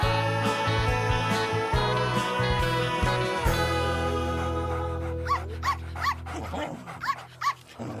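A dog barks and whimpers in a run of short, high, rising yelps that repeat several times near the end, fairly loud over a sustained musical tone.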